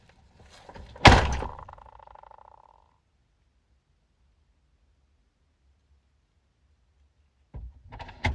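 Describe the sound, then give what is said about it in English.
A car door shuts once with a solid thunk and a brief ringing tail. Several seconds of near silence follow, then some faint rustling near the end. “I'm going to close the door real quick.”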